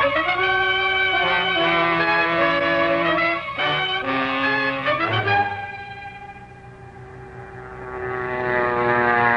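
vehicle, airplane engine in flight

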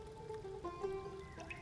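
nature, water fountain trickling

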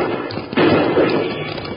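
sound effect, gunshots

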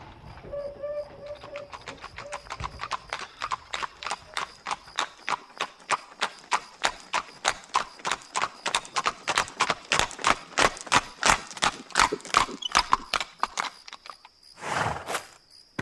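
animal, horse-drawn carriage hooves clip-clopping

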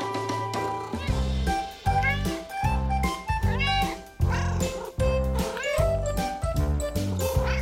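animal, cats meowing

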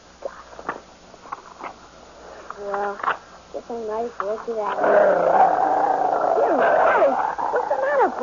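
animal, dog growling

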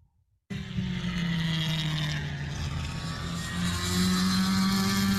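vehicle, race car engine running

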